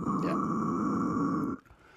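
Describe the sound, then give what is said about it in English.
A harsh, gravelly vocal growl scream drawn in on an inhaled breath, a screaming technique controlled with the mouth, sustained steadily for about a second and a half before cutting off abruptly, loud. “There's other styles of screaming as well where you can actually suck in.”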